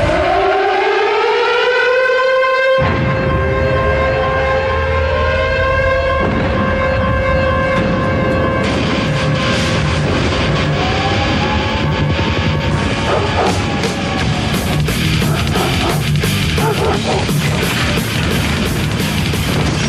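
A loud wailing siren rises and holds for the opening seconds, then heavy rock music crashes in with pounding drums and distorted guitar while the siren keeps sounding underneath.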